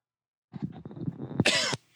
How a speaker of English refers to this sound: Excuse me. Sorry, I'm still dealing with a bit of a cough here.